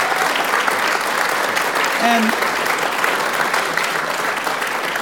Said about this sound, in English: So give him a round of applause for coming over.